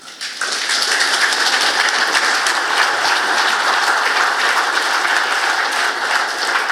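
A very large, enthusiastic evening crowd applauds steadily to welcome a speaker from the People's Mosquito, a dense wash of many hands clapping at once, building quickly and holding at a consistent, fairly loud level throughout with no voices heard.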